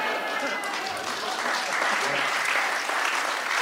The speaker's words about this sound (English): I was going to let the applause ride. That was very good.